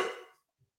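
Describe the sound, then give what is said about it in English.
A single short, sharp dog bark rings out and fades quickly, leaving near silence with only a faint low thump afterward. No one speaks. “even the dog's getting fired up.”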